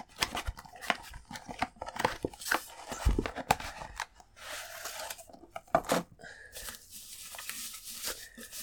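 Gift wrapping paper is torn open and crinkled in a run of sharp rips and rustles, with brief pauses between bursts and a softer crumpling toward the end.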